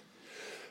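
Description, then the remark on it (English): A short, breathy nasal burst, a held-in, stifled sneeze, swells and fades in under a second. It is fairly soft, with no talking. “I was trying to pass it off so you didn't say it, because I still have the sneeze in my nose.”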